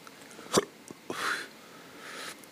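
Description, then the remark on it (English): A sharp hiccup breaks the quiet, followed by a couple of softer catches and breathy exhales, with no talking. “Yeah, I feel like a bitch every time I fucking start doing hiccups and shit.”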